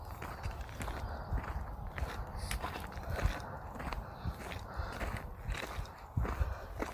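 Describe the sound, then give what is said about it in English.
Steady footsteps crunch along a path toward the National Park Centre at Sutton Bank, a regular walking rhythm of soft, gritty impacts repeating about twice a second over faint outdoor background noise, with no talking. “I'm now walking the last few hundred yards before I reach the National Park Centre at Sutton Bank, I'm nearly back to the main road that goes from Moulton to Scarborough, I think.”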